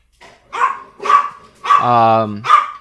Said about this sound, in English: Yeah, and then we'll just talk right through Walter's asinine barking.